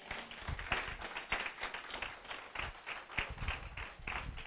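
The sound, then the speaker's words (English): An audience claps steadily for several seconds, a dense patter of overlapping hand claps at a moderate, even level with no talking over it. “Clap for the clap.”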